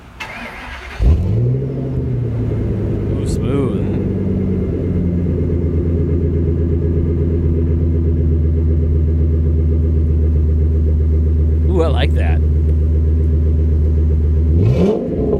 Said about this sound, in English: All right, guys. Let's see if you can guess this exhaust note.